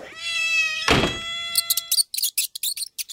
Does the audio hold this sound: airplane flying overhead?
no